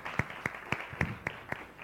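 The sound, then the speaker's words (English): Audience applause that comes through as a steady run of about six evenly spaced, sharp claps over a faint background murmur, moderately loud, with no talking. “Again, round of applause for them.”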